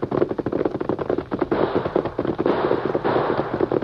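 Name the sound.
gunshots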